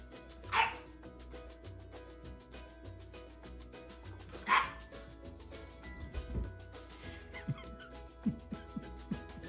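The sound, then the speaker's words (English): A puppy gives two sharp, high barks a few seconds apart, loud, over a steady low hum and faint rhythmic ticking in the background. “You walk in and boom, puppy.”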